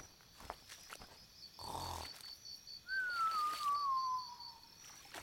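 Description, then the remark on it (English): A cartoonish snore of a giant sloth napping in a jungle tree: one rough, rumbling snort, then a long, thin whistle that slowly slides down in pitch, with no one speaking. “Shh, I think I hear something snoring.”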